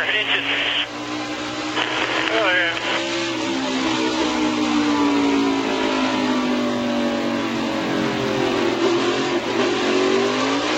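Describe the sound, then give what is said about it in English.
A race car engine roars loudly and steadily from inside the car, its pitch climbing and falling as it revs, with faint muffled voices of radio communication mixed into the constant drone. “And you, at the very end, you can hear the rev of the engine and the turn of the it just, none of this makes sense to a professional driver running for a championship.”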